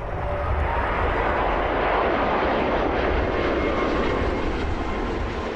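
A steady, loud roar of a jet airplane engine, broad and rushing, holding constant as a plane carrying 174 passengers lands at a military base in Trenton, Ontario, on the morning of February 7th, with no voices present.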